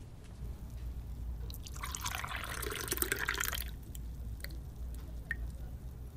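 Liquid pours steadily into a glass for about two seconds, a bright splashing trickle over a low background hum, followed by a few faint clicks and taps.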